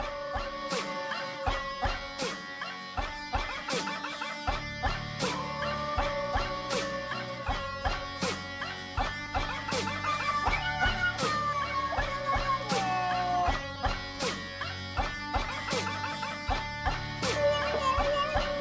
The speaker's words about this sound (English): What is that, a whale? It's a dog. A dog, a dog.